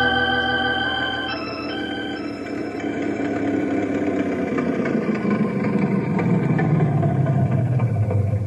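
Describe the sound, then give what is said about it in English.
An old Ford Model A car engine runs with a steady, throaty chugging hum, its pitch gradually shifting as it revs gently. No one speaks. “Your old Model A sounds good as new.”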